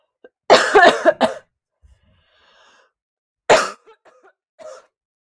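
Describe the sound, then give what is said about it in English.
A harsh burst of several rapid coughs, then a pause and a couple more sputtering coughs and throat clearing, with no talking. “I had to cough so bad.”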